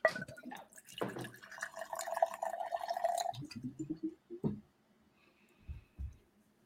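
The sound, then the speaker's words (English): Crown whisky glugs and splashes into a Texas glass for a couple of seconds as a victory shot is poured, its pitch rising as the glass fills, followed by a few soft knocks and clinks. “Victory shot. Yeah, I got this crown. Poured in my Texas glass.”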